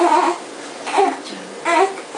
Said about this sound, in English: Next is eh. A short, sharp, almost angry sound, which means a baby needs to burp. It's trickier to distinguish, but listen out for the E part of the sound. A burp means gas trapped in the top of the chest.